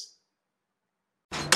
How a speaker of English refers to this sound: Hey! You kids, quit slamming my goddamn door!